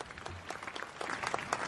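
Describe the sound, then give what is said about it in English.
A crowd claps steadily in a dense, crackling wash of many hands, holding fairly even loudness throughout the short burst with no voices standing out. “Let's give him his round of applause.”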